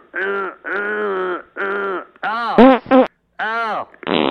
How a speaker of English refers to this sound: Oh, my God. Did she just fart? Yeah, I did